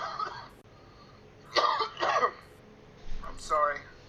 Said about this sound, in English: I'm sorry once again for the coughing, too.